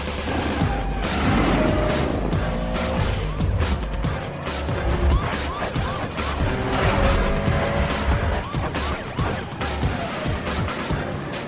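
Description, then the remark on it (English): Engines roar continuously as two cars race at high speed westward on Beach in a chase, with tires squealing and skidding amid a dense, loud chase, punctuated by sharp crashing impacts. “A fix on two cars going west on beach.”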